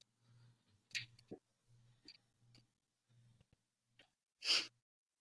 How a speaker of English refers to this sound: Bro, the clicking. He clicks like in patterns. He does.